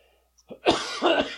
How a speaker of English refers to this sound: Excuse my. Look at you. Still got the COVID cough over there.